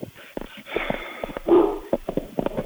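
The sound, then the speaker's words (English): At home, a dog barks repeatedly in a string of short, sharp bursts at things walking by, with a louder cluster of barks near the middle and quicker yaps toward the end. “is barking at every single fucking thing that walks by.”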